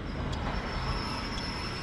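A subway train hurtles through Harlem in the late afternoon, rumbling steadily along the tracks, a dense low roar with a thin high whine running through it, heard from inside a car that is not crowded, with no voices.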